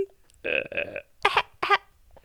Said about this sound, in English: Yeah, he has a really deep voice, but he coughs like a little baby.